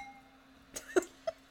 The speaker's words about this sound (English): Both. Good clink.